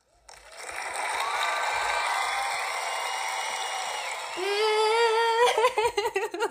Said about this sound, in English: Okay, pretend this cheering is a boo.